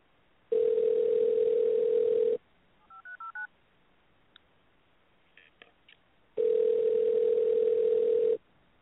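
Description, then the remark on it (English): A steady telephone dial tone hums for about two seconds as someone calls back a caller whose line cut out, then four quick keypad beeps and a few faint clicks follow before another long, even tone sounds. No one speaks. “Yeah, I'll call her and try to get her back.”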